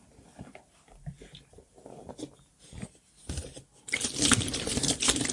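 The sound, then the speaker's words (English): Rustling of a bottle of water being handled, followed by a loud, sustained rush of water sloshing inside it for the last second and a half. “Got my bottle of water here.”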